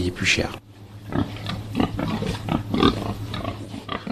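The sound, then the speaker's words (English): Several pigs raised on straw on a farm grunt and snort in quick, irregular bursts, over a steady low hum in the background. “can we imagine this way of pig farming using straw being, as it were, rolled out over France?”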